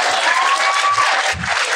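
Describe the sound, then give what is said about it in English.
An audience claps loudly and steadily, a dense wash of many hands that keeps going through the whole short moment without any talking. “Let's clap it up”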